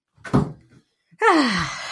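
A door is shut with a dull thud, followed after a short pause by a loud, drawn-out groaning creak that slides downward in pitch. No one speaks.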